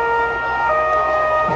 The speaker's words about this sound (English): Whoa, whoa, a deafening noise. Trucks, the ones used to transport Central Security Forces soldiers around. 1, 2, 5, 7, 10 of them rush by.